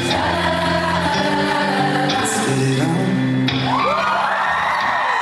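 A concert crowd cheers and whoops loudly and continuously over live music with sustained, steady notes, the roar holding level for the full few seconds.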